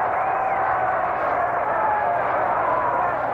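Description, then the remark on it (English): A ballpark crowd at a Dodgers baseball game roars and cheers in a steady, dense wash of voices that holds at a fairly loud level for a few seconds without any single voice standing out, reacting to a fan catching a foul ball up in the stands. “Crowd reaction to a catch up in the stand.”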